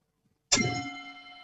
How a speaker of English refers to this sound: So now I will ring the gong and we will begin our silence.